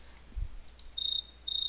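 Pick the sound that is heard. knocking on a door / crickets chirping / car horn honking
crickets chirping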